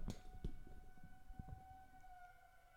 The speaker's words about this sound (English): Ooh, it's that noontime siren that goes off. We didn't think about that. I'm going to point the microphone towards the window so everyone can hear